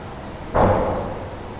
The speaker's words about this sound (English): Sounds like a fist on a door, yeah.